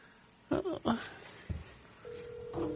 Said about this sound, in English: Uh-oh. I hear a phone.